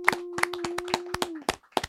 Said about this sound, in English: Clap it up. Clap it up, man.